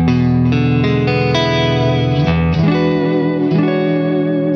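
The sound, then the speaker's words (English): An electric guitar played through a Suhr Bella open-back 1x12 cabinet with a V-type speaker strums a loud, sustained progression of chords that shift every second or so, with a warm, lightly driven tone and a shimmering chorus-like effect. “that'll be an open back 112. Okay, the Suhr Bella actually with a V-type speaker in it.”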